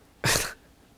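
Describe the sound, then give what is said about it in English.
A dog belonging to the speaker's aunt gives one short, loud, raspy snore, a single breathy snort lasting about a third of a second, with quiet all around it and no voices. “Is that tiger snoring? Yeah, my dog is snoring.”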